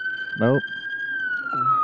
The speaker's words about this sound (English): Nope. Ambulance. Good for them. I'm pretty sure isn't this how like every podcast is in New York City?